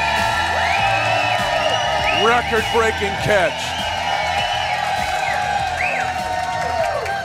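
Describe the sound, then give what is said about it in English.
A large live crowd at the Nolan Road Hy-Vee location cheers loudly and steadily at night, with scattered high whoops and shouts rising above the roar, while an announcer speaks briefly over the noise. “Again, an awesome crowd here tonight. You guys are giving me chills tonight. This is so cool. You are fired up here at the Nolan Road Hy-Vee location.”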